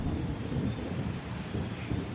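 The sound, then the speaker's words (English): Thunder rolls low and steady beneath a constant wash of rain, a deep rumbling storm filling the whole moment without any voices. “The thunderstorm has left you with a feeling of strange excitement.”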